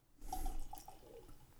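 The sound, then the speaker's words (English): Beer pours into a glass, a steady gurgling splash with faint bubbling tones that starts abruptly, stays fairly loud, then eases off. No one speaks. “Look at that pour.”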